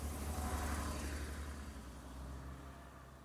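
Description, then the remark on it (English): Road traffic roars steadily, a thick wash of low engine rumble and tyre noise that swells briefly then eases a little, with no voices. “The walls of traffic are dammed up on either side, and I know at any moment they'll break over me.”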